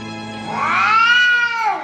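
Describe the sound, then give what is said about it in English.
A single drawn-out meow from a black cat, rising and then falling in pitch, loud, with a steady low hum underneath and no talking. “There's a black cat.”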